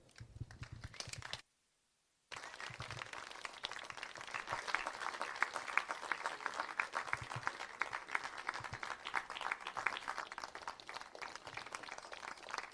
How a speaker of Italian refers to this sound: Grazie, allora adesso spazio alla musica. Io chiamerei con un grosso applauso ….